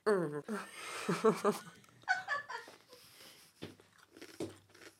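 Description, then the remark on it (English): Someone crunches and chews M&S sweet chilli crisps spread with Utterly Butterly, with sharp crackly bites near the end, following a burst of wordless, whiny vocal sounds. “Is that crisps and butter? It's M&S sweet chili crisp with utterly butterly.”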